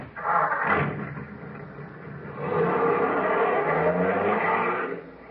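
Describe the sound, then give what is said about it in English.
A car engine roars to life with a brief rev, dips, then surges into a steady, loud rumble as the vehicle pulls away, with no voices. “Now, get in the car, everybody.”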